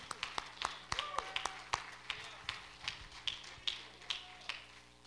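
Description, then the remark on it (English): Scattered hand claps from an audience during a sermon, sharp and coming in an uneven, loose rhythm rather than unified applause, with a faint murmur of voices underneath. “Clap your hands and love him today.”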